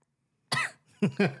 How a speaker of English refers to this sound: Ah, she coughed a little.